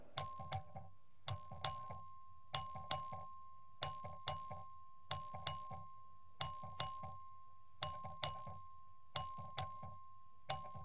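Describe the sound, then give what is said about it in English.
A voting bell in a legislative chamber rings for a record vote on the adoption of SCR 24. It rings in steady repeated bursts, each a bright, ringing chime with quick decaying strokes, about eight bursts evenly spaced, clear and moderately loud with no talking. “The clerk will ring the bell.”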